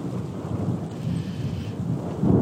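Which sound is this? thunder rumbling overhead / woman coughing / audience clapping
thunder rumbling overhead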